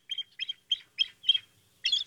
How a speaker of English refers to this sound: Is that not a bald eagle? This is a bald eagle.